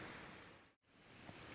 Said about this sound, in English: Well, I've had to come inside a bit because it's really started pouring with rain.